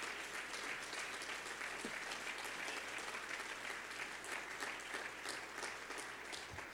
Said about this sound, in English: Let's clap our hands and thank God.